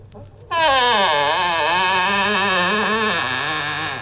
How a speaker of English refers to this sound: That's a fart. That's Winston Churchill's fart. I found that on Pornhub.